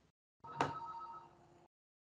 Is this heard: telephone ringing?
yes